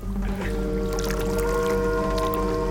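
A boat on a river blares its horn in one long, unbroken, droning blast, loud, with a low rumble of engine and water running underneath the whole time.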